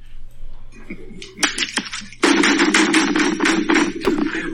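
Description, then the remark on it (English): Loud, rapid knocking on a door: a few scattered raps at first, then a sustained burst of insistent pounding that grows heavier and continues steadily to the end, with no voices. “I thought I locked that door again.”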